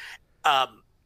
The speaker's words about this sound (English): I mean, no, I just added a yawn there. It's a fucking two-star match. I'm yawning just thinking about the match. That was a shoot yawn, too.